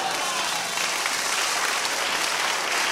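An audience claps steadily, a dense wash of many hands applauding at an even level throughout, with no break and no voices standing out above it.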